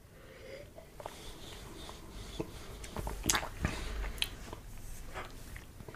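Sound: sipping whiskey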